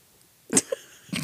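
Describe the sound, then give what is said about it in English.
A short, soft, quiet burp, followed by a tiny throaty catch and another brief body noise near the end, with no talking. “I just burped.”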